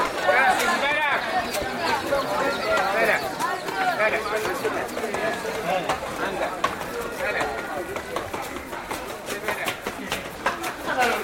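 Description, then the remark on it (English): Hooves clatter in irregular steps through a busy, echoing narrow alleyway of the ancient walled old city of Fez as donkeys and people move past, with a steady crowd murmur of overlapping voices all around. “So the traffic inside Old Fez is mostly people and donkeys.”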